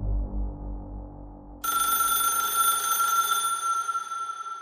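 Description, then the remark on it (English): A low rumble gives way after a moment to a loud, sustained ring of Bob's phone as the bookie calls, a bright bell-like trill that continues steadily to the end with no voices. “Bob's phone rang.”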